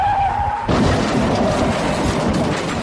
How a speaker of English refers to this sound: Hello, are you okay? No, I'm in a horrific car accident.